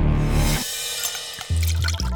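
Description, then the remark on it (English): Whiskey glugs and splashes as it is poured into a glass in a flat at Cranley Gardens, fairly loud, with a brief pause before the pour resumes. No one speaks. “Dennis poured himself a whiskey and handed his young companion a beer.”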